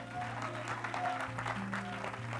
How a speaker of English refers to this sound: And I just believe he deserves all of our glory and all of our praise this morning. Can we give him another hand clap of praise and lift him up for a moment?